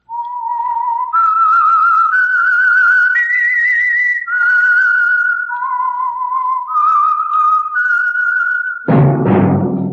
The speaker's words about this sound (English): That whistle is your signal for the Signal Oil Program, The Whistler.